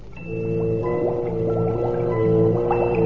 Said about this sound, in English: It is like a scene out of hell itself. That rock cauldron, boiling, bubbling, constantly stirred by those ape-like men. They are trolls.